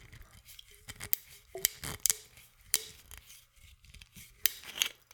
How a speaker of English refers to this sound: the bottle is capped with a simple red metal screw cap. Okay, let's give it a try. We're going to open the bottle up. Here we go.